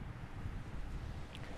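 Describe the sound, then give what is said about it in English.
Steady wind rushes and buffets outdoors during a walk on a beautiful, slightly windy day, a continuous low rumble with gusty swells and no talking. “I am outside on another walk, beautiful day, a little bit windy.”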